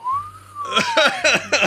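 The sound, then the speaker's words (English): A person whistles a sustained, gliding note that rises slightly and then drops, used to stand in for a question mark, followed by a few quick, choppy bursts of sound, all fairly loud. “Question mark is tough, right? What would you do? I just whistle.”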